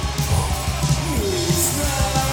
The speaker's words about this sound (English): It sounds like it's live. Well, it's the reverb. And there's reverb, too much reverb on the vocals and on everything. Mostly the drums and vocals.